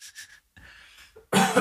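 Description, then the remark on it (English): A person coughs off mic, a few short throaty bursts building to one louder, harsher cough at the end, with no talking. “I'm leaving that cough in, sorry about that. At least I did it off mic.”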